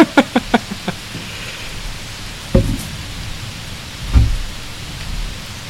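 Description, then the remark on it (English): Heavy rain pours steadily in a dense, even hiss, with a quick burst of sharp taps at the start and a couple of low thuds later on. No one speaks. “Yeah, you can probably hear the rain now.”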